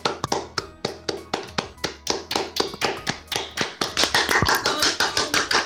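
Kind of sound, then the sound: crowd, small group clapping hands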